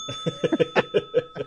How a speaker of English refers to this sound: Ring the bell for me on that one, DP, please.